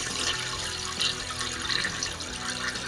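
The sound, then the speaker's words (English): A toilet flushing, heard as a steady, continuous rush of water that stays fairly even in loudness for a few seconds, with no one talking. “That sounded like a toilet. It's a toilet flushing.”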